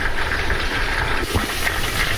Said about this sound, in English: And you can hear the chicken frying, so we'll wait until the 10 minutes is up, and then we will turn, take the lid off, turn the chicken over.